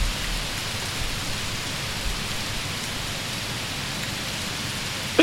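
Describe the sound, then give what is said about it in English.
Heavy rain pours down steadily, a dense, continuous hiss of drops drumming on a surface, loud with no pauses or voices. “Oh my god, it's getting so fucking loud with the rain.”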